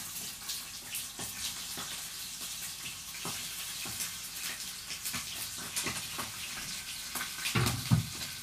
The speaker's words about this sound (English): Putting some chicken in the pan.